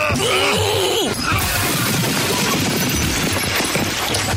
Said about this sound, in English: I love the sound of breaking glass in the morning.